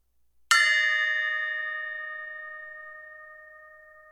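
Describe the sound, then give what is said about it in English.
A single bell is struck once, sharp and bright, then rings out with steady metallic overtones that fade slowly over several seconds. No voices, clear. “It only rings a couple seconds. What is the decay on?”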